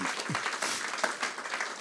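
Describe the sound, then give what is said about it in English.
A church audience breaks into steady applause for its volunteers' nearly 15,000 hours of voluntary time, a dense, continuous patter of many hands clapping at an even loudness throughout, with no one speaking over it. “I think you should give yourselves a big clap for that.”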